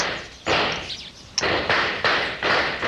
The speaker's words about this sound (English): There's a noise that ought to be familiar to you. Gunshots. Sounds more like home. Where them shots coming from,